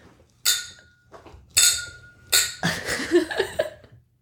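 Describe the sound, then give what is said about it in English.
Glasses of sparkling wine clink together three times in a toast, each bright ringing chime fading quickly, followed by a stretch of soft sipping and shuffling sounds. “So our first taste. Should we cheers? Cheers, ladies.”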